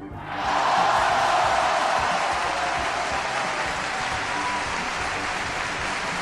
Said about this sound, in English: Holy shit, hold on a second. That deserves a big cheer.